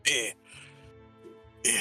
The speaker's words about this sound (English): And like right now, … coughing is getting even more violent.